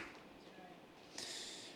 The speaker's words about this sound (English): Come on, let's give God a clap.